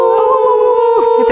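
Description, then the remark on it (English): People howl together in imitation of dogs, a loud, sustained, wavering tone held steadily for about a second with a slight pitch dip near the end. “We normally howl with my dog when we end.”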